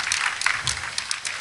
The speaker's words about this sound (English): I hear, is it raining or somebody clapping? I think. Oh, there's a couple. There we go. There's a couple. Now it's a roar. That's not even golf applause.